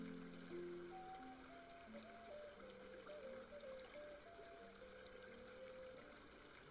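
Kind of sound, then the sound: nature, flowing river water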